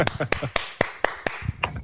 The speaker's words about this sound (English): Hey, the one person clap.